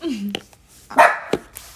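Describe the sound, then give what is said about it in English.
A pet dog gives a few short, sharp barks, one strong yelp in the middle followed by a quick second bark, with a brief whine-like tone at the start. “That's my dog.”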